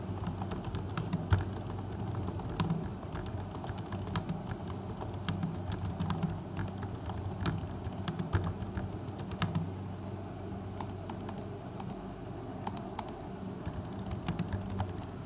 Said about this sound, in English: So maybe it's just my earphone mic that's capable of recording that low volume, but let's just test it out. So let's see if you can actually hear me typing a bunch of random stuff.